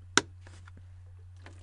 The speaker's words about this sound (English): But I'm here to remind you guys to drink your water. Goddamn right. Honestly. And on that note, I take a sip.